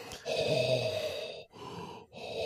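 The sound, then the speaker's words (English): A voice imitates Darth Vader's heavy mechanical respirator breathing: one long, raspy hissing breath followed by two shorter ones, fairly loud, with no talking. “Cue Darth Vader breathing noises.”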